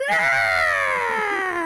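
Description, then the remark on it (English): A single loud, shrill screech of a drake rings out for under two seconds, its rich harmonic wail sliding steadily downward in pitch, with no talking. “So none of you are able to pull yourself out of this spinning tumble as you hear a terrifying screech.”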